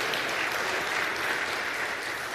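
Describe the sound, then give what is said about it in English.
A church crowd applauds the fathers who came on Father's Day, a dense wash of many hands clapping at an even, fairly loud level for the whole stretch, with no voices standing out. “So, look around at the fathers that made the choice to come today, and let's give them a round of applause, because that is fantastic.”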